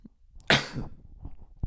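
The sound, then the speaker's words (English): A single loud, explosive cough bursts out, followed by a few faint breathy rustles and a short soft thump near the end. No talking. “Yeah, excuse the coughing.”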